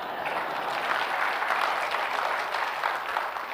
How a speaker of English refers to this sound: You can clap if you want.